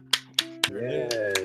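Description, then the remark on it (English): A handful of sparse hand claps, about five sharp smacks with uneven gaps between them, sounding over a steady hummed or sung voice that carries on underneath. “I'm trying to clap.”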